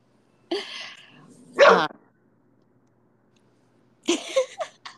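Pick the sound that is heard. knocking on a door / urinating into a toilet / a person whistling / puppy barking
puppy barking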